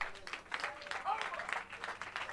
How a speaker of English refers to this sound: Clap your hands. I finish.